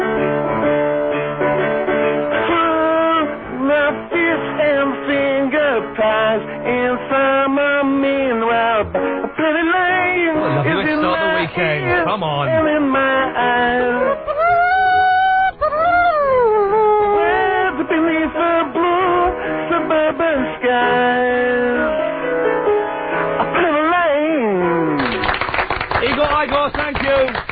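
A 1960s pop song plays continuously at a steady, fairly loud level, with a lead vocal over bright band instruments and a slightly narrow, radio-like tone.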